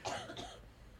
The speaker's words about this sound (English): This week and last week is the most I've never laughed in my entire life. Because I can't. It sends me into a coughing fit.